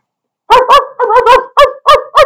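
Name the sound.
dog barking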